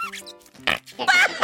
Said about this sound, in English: This, my new robotic buddy, is Fart Putty. What does it do? Watch and listen.